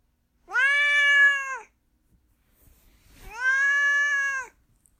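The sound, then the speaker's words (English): A cat named Duarte meows twice, each call long and drawn out with a steady, tonal quality, separated by a pause filled with faint shuffling noise. The meows are clear, with no talking. “Let's move on to Duarte's corner, where my cat Duarte shares his thoughts about the book.”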